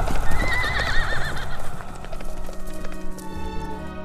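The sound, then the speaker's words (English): Horses gallop past with a rapid, loud clatter of hooves, while a horse lets out a high, wavering neigh near the start; the hoofbeats continue steadily before gradually easing. “Both his old barn horse and the demon rider continued riding past him in the night.”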